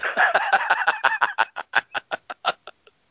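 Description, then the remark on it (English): An owl call: a rapid run of about seventeen harsh, nasal hoots, loud at first, then spacing out and fading away. No one speaks. “Check out my owl.”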